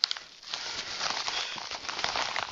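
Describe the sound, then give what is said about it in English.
Bubble wrap packaging from a newly delivered headset being handled, a steady dense crinkling and rustling of plastic with scattered sharp crackles, fairly loud and continuous with no voices. “And there's always the poppy bubble thingies.”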